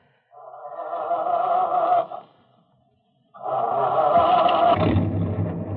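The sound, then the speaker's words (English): A truck engine turns over and whines, pauses briefly, then fires up again louder, settling into a deep rumbling roar as the vehicle pulls away, with no voices. “I will take a chance on the confusion and grab that first truck.”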